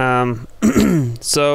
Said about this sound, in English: You know, I might have Corona. Maybe that's why I'm coughing.